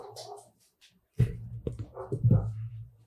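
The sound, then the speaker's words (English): A dog makes whimpering, whiny noises, first soft and high-pitched, then louder, rougher vocalizations after a short pause, with no one speaking. “Kill the dog real quick.”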